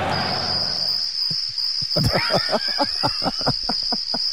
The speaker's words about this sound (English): There's no reaction at all. Got the crickets.